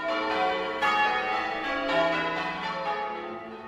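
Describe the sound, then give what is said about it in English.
Wedding church bells peal continuously, a dense, ringing wash of overlapping tones with a few brighter strikes standing out, loud and steady throughout with no voices. “We have a final hurdle in the shape of Lady Catherine, and then the wedding bells ring at last.”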